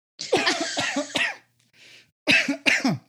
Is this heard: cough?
yes